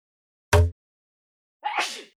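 A sharp, explosive sneeze, followed after about a second of silence by a second, breathier sneeze-like burst. No talking.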